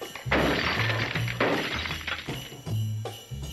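Old glass Christmas ornaments being broken, four sharp shattering crashes in a row, each followed by a brief tinkling spray of fragments, over a low steady hum.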